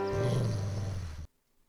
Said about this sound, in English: Wrong shelter, Sarah. Also, that's a wolf.